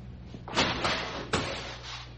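Two dull thuds of food, a whole ham sandwich, being slammed onto the floor by a woman, a second apart, the first with a brief scraping shuffle, over a low steady background hum.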